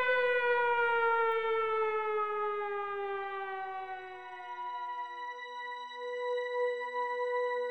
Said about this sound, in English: It finally subsides. And that's when you hear a siren. The siren. And you know the worst is yet to come.